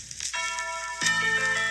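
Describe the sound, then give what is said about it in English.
A church bell rings out twice at the very beginning of a song, each deep, resonant strike followed by a long shimmering hum that fills the short stretch, with no voices present. “I literally saw that every time I heard the bell, and I was like, "A church bell?"”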